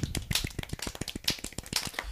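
A small group claps for a couple of seconds, the sharp hand slaps overlapping unevenly in a brisk, scattered patter at moderate volume, with no one speaking.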